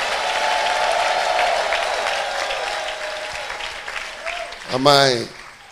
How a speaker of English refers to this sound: Come on, clap your hands and shout and praise God.